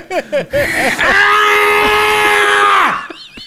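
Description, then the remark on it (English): A man lets out a loud, close scream at the screen in frustration over a game he is playing on an iPad, a long sustained yell lasting about two seconds, preceded by a few short strained vocal bursts and ending abruptly. “I think I love close up screaming at the screen like that's gonna do it.”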